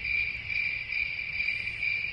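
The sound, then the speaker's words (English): A steady, continuous chorus of crickets chirping, played as a sound effect, a bright high-pitched trill holding at an even level throughout with a faint low rumble underneath and no voices. “Anyway, crickets is really what we're getting.”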